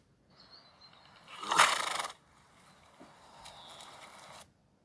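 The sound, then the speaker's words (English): A horse neighs once: a thin high whinny rising into a loud, breathy burst, then trailing off into a rough, fluttering snort before fading out. No one speaks. “A horse.”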